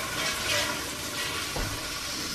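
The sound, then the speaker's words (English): A toilet flushes with a steady, rushing hiss of water that stays loud throughout, with a brief low gurgle partway through and no voices. “Just going to let that person flush.”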